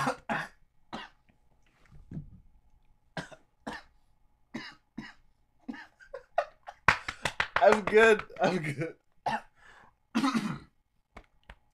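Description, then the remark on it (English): Someone coughs in a string of sharp, harsh bursts after a sip of tea went down the wrong way, then breaks into a longer sputtering, choking fit of coughs and throat clearing, with a brief spoken reassurance between bouts. “A sip of tea right now. The wrong way, yeah.”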